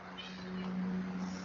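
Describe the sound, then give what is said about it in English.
A cat, Leia, lets out one long, drawn-out, steady meow over a constant airy whooshing hiss from a fan. “Your cats.”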